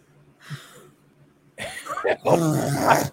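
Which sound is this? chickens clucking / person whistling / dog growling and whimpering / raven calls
dog growling and whimpering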